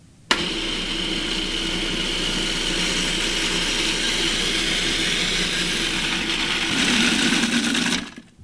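A food processor blends 3 cups of loosely packed basil leaves while half a cup of olive oil is poured in through the top, whirring steadily for about eight seconds, a loud, constant motor drone with a bright hum, shifting slightly in tone near the end before cutting off abruptly. No one speaks.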